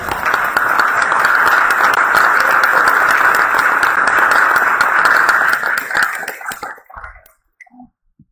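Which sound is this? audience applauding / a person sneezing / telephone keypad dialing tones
audience applauding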